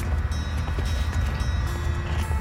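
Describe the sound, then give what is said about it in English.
A steady, low ship's engine hum drones continuously, dense rumble in the bass with a faint high whine and some mechanical rattling on top, no talking. “It is the best sounding engine.”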